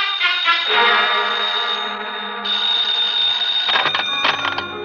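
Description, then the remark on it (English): A telephone bell rings loudly, a steady metallic trill that briefly dips midway, then resumes with rougher, clattering bursts near the end. No voices are heard. “I grabbed the phone and listened.”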